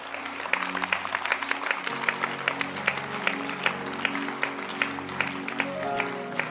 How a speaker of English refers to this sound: Keep clapping your hands. Keep clapping.